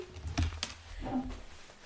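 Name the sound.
mechanical keyboard typing clicks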